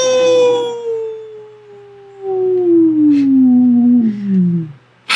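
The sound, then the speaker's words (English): A person imitates a werewolf howl: one long, loud note that holds steady, then slowly slides downward in pitch for nearly five seconds before breaking off. “But how about you just roar like a werewolf, and if I'm not convinced, then you're not a real werewolf.”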